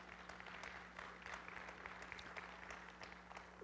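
Soft, scattered applause from an audience, a steady patter of many hands clapping at low volume for a few seconds, with a faint low hum underneath and no voices.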